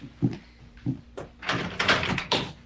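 Two dull knocks on a bathroom door, followed by a burst of loud rattling as the handle is tried and the door shaken, with no voices.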